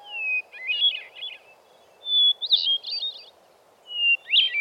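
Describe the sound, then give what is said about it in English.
Hermit thrush song: three clear phrases, each opening with a long pure whistled note and spilling into a quick, ethereal fluting flourish, with a soft low hum of background noise underneath. “If you're in the right place at the right time, you can hear his sweet and serene, enchanting and ethereal song.”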